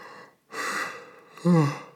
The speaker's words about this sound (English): And I'm keeping that yawn in the podcast.